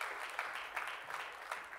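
A crowd applauds steadily, a dense wash of many hands clapping at a moderate level with small swells throughout, and no voices standing out.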